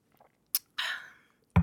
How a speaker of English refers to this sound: And then I'll slurp some water. Here I go.